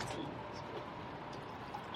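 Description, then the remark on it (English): Wine is poured generously into a glass in a steady, continuous stream for about two seconds, soft, with a faint gurgling splash and no talking over it. “Give you a generous pour.”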